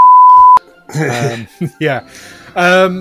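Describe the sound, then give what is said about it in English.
A loud, steady censor beep holds for about half a second and cuts off abruptly, followed right away by a person talking in short bursts. “I might beep out.”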